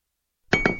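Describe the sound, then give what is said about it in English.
Two quick metallic hammer clinks ring out close together after a moment of silence, each strike leaving a bright, lingering ring that fades slowly. “Your archers are now level 2. With hammers, apparently.”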